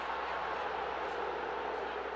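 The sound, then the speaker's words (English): A large stadium crowd at an American football game roars in a steady, unbroken wash of noise for about two seconds, with no clear voices standing out, reacting to the Sony replay of a disputed third-and-one run ruled a first down. “That's what the crowd is reacting to on the Sony replay.”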